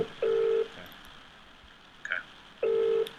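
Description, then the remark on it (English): A phone's ringback tone purrs twice, each steady beep lasting under half a second with a pause between, heard over a quiet line with a brief faint noise in the gap. “All right, it's ringing.”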